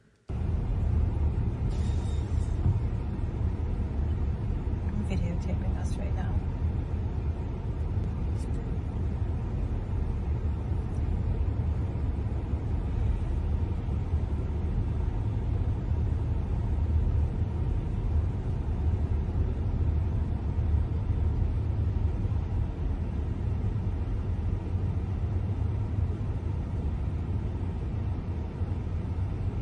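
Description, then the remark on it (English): A constant, heavy roar of traffic crossing a bridge in San Francisco, with deep low-end rumble filling the whole stretch, vehicles continuously passing, with a few brief higher-pitched squeaks or clanks early on and no talking. “Traffic there. That's all I'm saying. So much traffic.”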